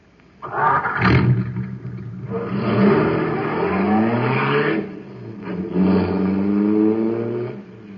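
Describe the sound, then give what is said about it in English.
A car engine roars loudly and revs up and down for several seconds, its pitch sweeping and rising between bursts, continuous with no talking; the car is supercharged with super fuel just filled into its tank. “Boy, that cosmic surface car is really roaring. That's because it's supercharged with super fuel.”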